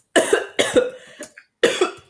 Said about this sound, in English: Stop coughing.